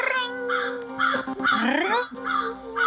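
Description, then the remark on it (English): A voice imitates an old-fashioned telephone ringing with loud, nasal, warbling tones in repeated bursts, broken by a brief rising vocal slide in the middle. “I'm like pretending I'm an old-fashioned telephone.”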